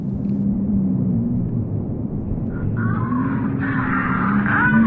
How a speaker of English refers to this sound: Let's give a listen. And it sounds like the storm's getting worse.